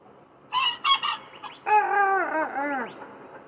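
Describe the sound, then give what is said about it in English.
A rooster crows loudly: three short, sharp notes, then one long, drawn-out call that wavers and drops in pitch at the end. No one speaks. “Why do chickens crow?”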